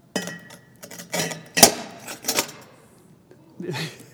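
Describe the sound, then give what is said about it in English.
River rocks from behind a church clatter and clink into a glass jar in several uneven bursts as it is filled, with one sharp, loud knock in the middle and a softer rattle at the end; the glass breaks. “I'm going to fill this with these rocks.”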